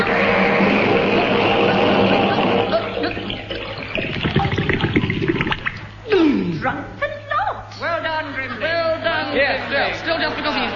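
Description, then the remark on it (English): Loud, steady rushing water pours and churns for several seconds as it floods a room, then continues more quietly beneath overlapping, agitated voices crying out and talking. “My feet aren't wet yet. You're standing on my head. Oh, Auntie, think of something. Not that. It's over my chin. I'm swallowing water.”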